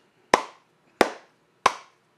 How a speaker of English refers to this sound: You gotta get the thick clap in the background.